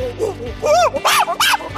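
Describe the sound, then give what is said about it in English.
Loud monkey screech sound effects in a quick burst of four or five calls, each sliding up and back down in pitch, shrill and excited, with no talking. “There's some monkeys.”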